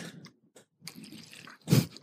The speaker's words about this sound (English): As I take a sip of my water. Can you hear it? Yeah. ASMR that. Really. Okay, wait. Let me get closer to this mic.